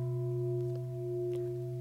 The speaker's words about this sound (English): Okay, you hear the bell?